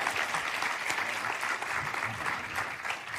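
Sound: audience clapping in welcome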